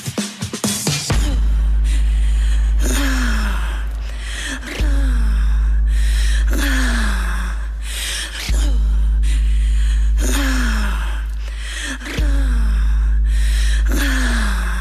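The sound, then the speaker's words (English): Sharp, rhythmic gasping breaths repeat in a steady pulse over a sustained low musical drone, forming a breathing break in a song, loud throughout, with no talking. “I believe there's a break with some breathing in it, if I recall correctly.”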